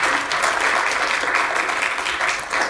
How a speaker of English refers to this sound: Absolutely. Got some applause there.